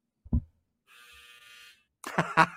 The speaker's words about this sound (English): That was my dryer, ladies and gentlemen. Nice. Perfect, well, right on the buzzer.